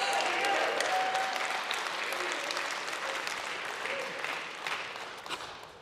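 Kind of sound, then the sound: crowd, audience hand clapping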